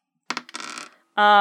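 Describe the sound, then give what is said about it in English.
A couple of sharp clicks, then a quick rattling clatter of dice tumbling across a hard tabletop, fairly loud, followed by a voice starting to speak. “Let me find my dice and I'll tell you how many spells they have in them.”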